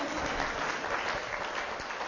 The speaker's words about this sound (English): You should be applauding the fact that 60 years on, I can still do that.